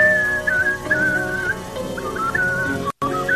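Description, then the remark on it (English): A man, a world champion whistler, whistles a wavering, sustained melody before a sold-out crowd in a 1989 recording, over a dense, murmuring background, the clear tune gliding between pitches before cutting out abruptly near the end. “This is American Idol whistling.”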